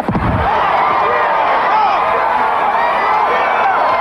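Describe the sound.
A wrestling arena crowd erupts in loud, sustained cheering as Steve Austin attacks his old partner, a dense roar of voices and whoops that holds steady throughout, with a brief low thud right at the start.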